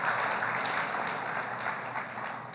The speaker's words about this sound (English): We're here to celebrate the seniors, but I think we should celebrate parents, too, and say, hey, maybe y'all can rest a little bit. Yeah, let's give a round of applause.